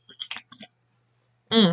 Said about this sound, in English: Sorry for slurp noises because I'm drinking Dr. Pepper cream soda, as always.